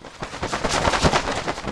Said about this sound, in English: We make the male owls do stuff like fluff out their fancy feathers or perform a sky dance. That's where they show off the fanciest flying dance moves. Swooping and swirling and slapping their wings together.